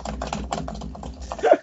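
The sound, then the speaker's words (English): Rapid, irregular clicks of typing on a computer keyboard picked up by a microphone during an online chat, a quick run of crisp keystrokes over a faint low hum, with a slightly louder burst near the end. “Oh yeah, I'm like, why is his keyboard mic'd? It's funny because when I say play that music, it's like or do the news, his mic is muted, but when he's typing, it's like.”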